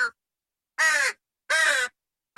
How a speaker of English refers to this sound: Should we hear the crow? Should we hear the crow?